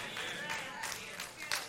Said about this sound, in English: And it was a young person that started that clap. Thank you, young man.